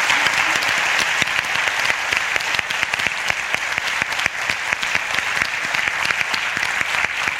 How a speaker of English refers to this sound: So if we could just give her a round of applause, please.